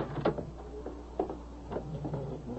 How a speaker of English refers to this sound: Would you hold the door for me while I wheel Mrs. Houston out onto the sun porch?